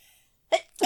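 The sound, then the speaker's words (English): A sudden sneeze breaks the quiet: a sharp breathy intake followed quickly by a loud, explosive burst, with no talking around it. “Bless you.”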